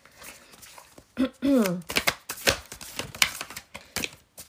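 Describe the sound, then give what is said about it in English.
A deck of Oracle cards being shuffled: a run of quick, crisp papery riffles and snaps in uneven bursts, interrupted early on by a short rising-and-falling voiced sound. “I love the sound of shuffling cards.”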